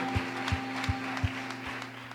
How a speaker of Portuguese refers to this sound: Aleluia. Aplauda o Senhor, Ele é digno. Aleluia.